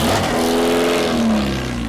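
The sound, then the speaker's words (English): A loud race car engine revs hard on a track, its pitch climbing and sliding in steady harmonic sweeps before easing off slightly, with no voices over it. “And some really cool cars on the track.”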